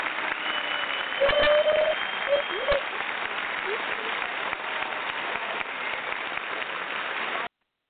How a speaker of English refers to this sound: we'll give her a round of applause as we bring her on, because we want to thank her for sharing with us.